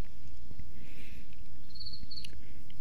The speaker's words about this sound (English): By the way, I got old Norman the Cricket in the studio, and he's been very chatty lately, and I've just adopted him as the I say unofficial mascot of the Last Symptom, but he might as well become the official mascot.